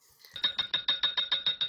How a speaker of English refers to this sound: Ice clinking in a glass of Pinot Grigio.